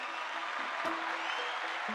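A round of applause from many hands, a dense, steady wash of clapping that holds an even loudness for the whole two seconds, with no voices over it.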